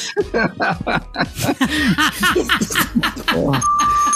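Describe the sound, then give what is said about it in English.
A doorbell chime rings out near the end, signalling the next round of a quiz, a clear sustained tone sounding over a burst of laughter and lively chatter from several people. “That bell tells me the next round.”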